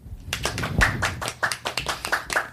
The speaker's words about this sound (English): I clap for myself to add more.